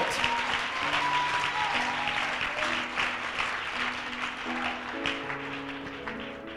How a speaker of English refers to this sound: How many of you love our pastor, our bishop? We love our bishop. Oh, clap your hands for our bishop. We love our bishop.